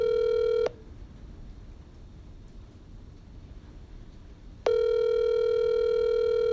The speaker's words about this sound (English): You know he can hear it. You know he can hear his phone ringing.